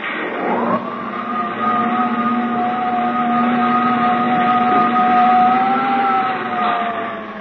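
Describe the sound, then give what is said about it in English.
A steady, droning mechanical hum of spaceship jet dynamos driven by the harnessed power of 1,000 suns, with sustained tonal lines that hold and slowly shift in pitch, loud and unbroken for the whole stretch with no voices. “Those jet dynamos you see before you exist. Jet dynamos driven by the harnessed power of 1,000 suns.”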